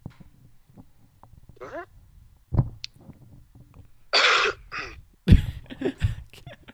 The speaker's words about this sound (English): So everyone, sorry for that ear rapey cough back there.